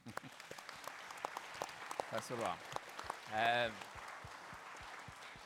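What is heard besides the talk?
audience applause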